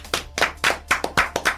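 A quick run of hand claps for a show guest, about six or seven sharp, bright slaps in a steady rhythm, fairly loud with no voices over them.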